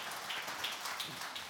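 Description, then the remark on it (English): A crowd claps in a dense, steady patter that holds evenly for the whole short stretch, with a few slightly sharper claps surfacing now and then and no voices. “Let's give Ryan a round of applause, can we?”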